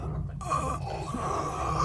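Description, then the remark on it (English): A strained, rasping choking gasp, someone struggling for breath with throat constricting as though by the Force, in one continuous wheezing effort, fairly loud, with no talking. “Are you having difficulty breathing, Morty? Is your throat constricting as though some force were at work?”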